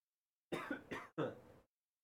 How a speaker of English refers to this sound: sorry, coughing. Go ahead, keep going.